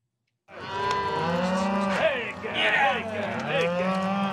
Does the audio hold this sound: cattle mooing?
yes